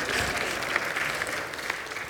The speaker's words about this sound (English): was someone clapping at that? Yeah, let's give it up for our three-year-olds.